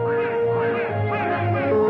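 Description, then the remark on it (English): A bird gives a run of loud, nasal honking calls, continuous, with several overlapping honks rising and falling over a steady background. “Turns out birds don't need tail feathers to live.”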